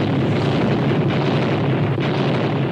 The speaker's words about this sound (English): And then a second ball of fire rose from the bow of the ship. And then another and another explosion until instead of a ship, I was looking only at fire. And within the fire, I thought I could see the ship rise into the air.